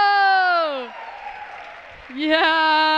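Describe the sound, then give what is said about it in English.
Audience applause for a girl's gymnastics and cartwheels performance on stage, a noisy patter of clapping, with loud drawn-out cheering whoops rising and falling in pitch at the start and again near the end. “Hey, give her a round of applause.”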